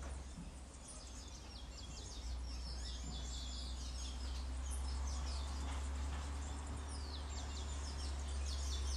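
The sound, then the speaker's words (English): Birds sing and chirp continuously outdoors in St. Thomas, Barbados, in the Caribbean, with repeated high, bright trills and calls layered over a steady low hum, staying at an even, moderate level with no talking. “For the backing support from the birds, occasional cow, sounds of St. Thomas, Barbados, gem of the Caribbean Sea.”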